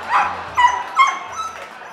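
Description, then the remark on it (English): Beauty, the magician Lafayette's dog, barks four times in quick, uneven succession, sharp, with brief pauses between the barks and no voices present, at an intruder she discovered during a performance. “One night, mid-performance, Beauty started barking.”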